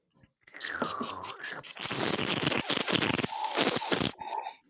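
A loud, close-up sipping noise, a wet, airy slurp drawn out for several seconds with gurgling, uneven bursts before cutting off abruptly.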